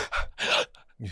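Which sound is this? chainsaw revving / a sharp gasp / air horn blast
a sharp gasp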